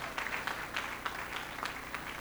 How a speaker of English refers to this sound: And give Jesus a clap here and let me free cry.